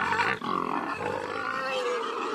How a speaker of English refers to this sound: Yes, I have a sick horse. Listen. That doesn't sound right. Does that sound like a healthy horse to you?